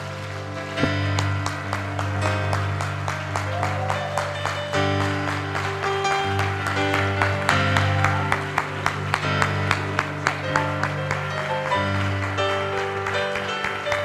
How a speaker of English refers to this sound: In the name of Jesus, if you believe that prayer, would you clap your hands unto the Lord right now? Come on, just a little louder, just a little longer across this house.